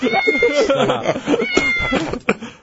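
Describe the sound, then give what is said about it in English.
A cat meows repeatedly in a strained, drawn-out way, fairly loud, with voices talking over it in the background. “Leave my cat alone.”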